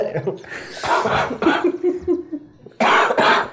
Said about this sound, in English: Cough